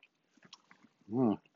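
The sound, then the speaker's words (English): A brief throat clearing: one low, voiced rumble near the end, preceded by faint mouth clicks and smacking sounds. No talking. “My throat starts to get itchy, and I start to cough.”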